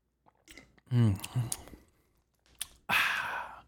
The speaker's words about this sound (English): I have a dry throat, so let me drink this real quick.